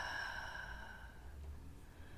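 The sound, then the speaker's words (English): A soft, slow breath drawn in and let out, faint, during a guided breathing exercise, over a quiet sustained tonal drone in the background. “Gently breathing in and out.”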